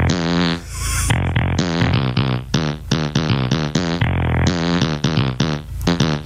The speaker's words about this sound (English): Dude, I'm fucking dying. Maybe we'll have that same fart come up and...